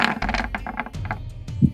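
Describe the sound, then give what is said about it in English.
Dice clatter and tumble across a hard tabletop, a quick run of sharp clicks and rattles that slow and settle after a second or two, the roll landing on a 4. “Ooh, 4 on the dice.”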